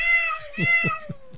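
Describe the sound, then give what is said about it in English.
A cat fight sound effect: a cat yowls in a drawn-out, wavering meow, with several low growling pulses underneath. It is fairly loud, with no talking. “He's chopping up right now, and start the cat fight.”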